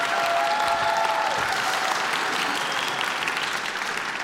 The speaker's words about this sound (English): Okay, now for the non-clappers, or those of you who clapped insincerely, this topic honestly brings out the inner ugh in us.